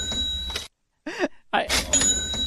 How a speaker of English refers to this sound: That sound effect was a cash register. Yeah. Ka-ching. Ka-ching.